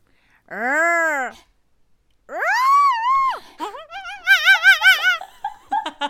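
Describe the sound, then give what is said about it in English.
A voice imitates three animals in turn: a rising-falling trumpeting elephant call, a high warbling birdlike trill, then a string of quick, choppy monkey hoots and chatters. “That was an elephant, a bird, and a monkey.”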